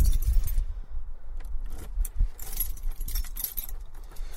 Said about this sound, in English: I've got too many fucking keys.